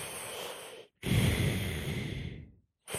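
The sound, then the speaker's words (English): A voice imitates a pilot breathing through a helmet oxygen mask as heard in a virtual flight simulation: two long, hissing, airy breaths, a short inhale then a longer exhale, fairly loud with a brief gap between them. “There was the humming of the ship and like the breathing of the pilot as if you were in a helmet, right?”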